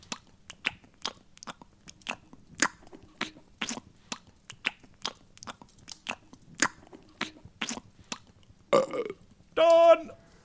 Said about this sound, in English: And here, I've got today's meal deal from Greg's. A steak bake, a packet of Walker's Wrong Cocktail, and an iron brew. Some people find the sound of chewing relaxing, so why don't you bring a bar of soap and join me in my meal deal therapy.